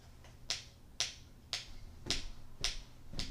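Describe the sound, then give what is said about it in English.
A metronome ticks steadily, six crisp, sharp clicks evenly spaced about twice a second, each with a bright snap, over a faint low hum and no talking. “Is there a metronome in here? Wow, that's cool. Listen to the metronome.”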